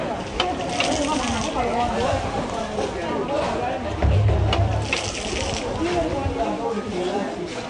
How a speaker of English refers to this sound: Refugees fill old petrol cans with water from a well,